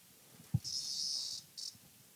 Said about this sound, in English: Yeah, there's a fucking cicada over there. Running into shit.